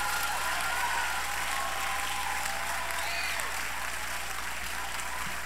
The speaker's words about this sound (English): Congratulations. Shall we give a round of applause?